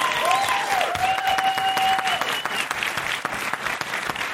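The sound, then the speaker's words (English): A large live-show audience in Toronto claps and cheers steadily and loudly, with a long piercing whistle rising above the applause early on before the clapping carries on alone. “Yeah, this is where the crowd goes crazy.”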